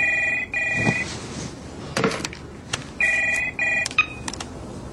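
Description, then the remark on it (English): A telephone rings in two double bursts of steady electronic tones, with a pause between pairs, while a few soft clicks and thumps sound in the gaps; a call from Samuel, answered by Mary, in a drama clip. No one speaks. “So Samuel calls.”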